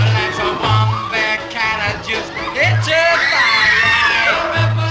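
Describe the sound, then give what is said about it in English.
A loud audience shrieks and screams continuously on first seeing a performer in pale makeup and Victorian undertaker garb emerge from a dark walkway, many high-pitched voices overlapping in a dense wall of sound, while a steady low thumping beat pulses underneath. “They just shriek.”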